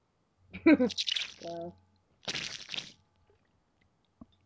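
Loud drinking from a vacuum flask bottle: wet gulping and slurping, a brief squeaky tonal note, then a hissing rush of liquid and air, ending with a small click.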